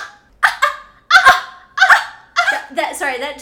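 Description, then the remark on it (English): A voice lets out a series of weird, high-pitched barking yelps like those of 14-year-olds, about five sharp, honking bursts in quick, uneven succession, loud. “It's like this weird high-pitched barking sound that 14-year-olds, they're like puppies.”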